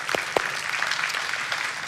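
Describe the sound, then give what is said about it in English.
A crowd claps steadily, a dense wash of many hands applauding, with a couple of sharper individual claps standing out near the start. “We can applaud that.”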